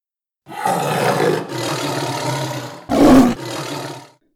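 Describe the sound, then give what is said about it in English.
A tiger roars loudly, a long rumbling growl that surges through several swells, peaking in a harsh blast near the end before trailing off. No voices. “It's amazing how fast you can climb a ladder when there's a tiger roaring for your blood.”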